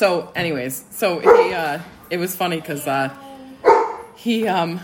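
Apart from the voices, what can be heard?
dog barking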